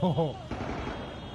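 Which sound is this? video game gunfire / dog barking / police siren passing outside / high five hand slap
video game gunfire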